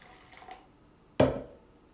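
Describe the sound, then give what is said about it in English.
A lemon-flavoured drink is poured into small sample cups: a faint trickle at first, then a short, sudden splash of liquid that quickly fades. “I'm pouring in samples.”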